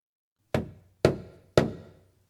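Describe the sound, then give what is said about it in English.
Three firm knocks on a front door, evenly spaced about half a second apart, each with a short resonant thud that fades quickly, heard alone with no voices. “She goes up to check on Donnie, who's still sleeping, and she hears a knock at the front door.”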